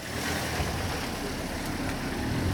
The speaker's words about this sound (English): In the East Jerusalem neighborhood of Shaya Monday, pedestrians slip into entryways to allow cars to pass in the narrow streets.